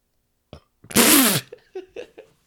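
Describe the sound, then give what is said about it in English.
A single short, breathy burp lasting about half a second, rough and airy with a slight falling pitch, followed by a few faint, brief vocal sounds. “That was the saddest burp ever.”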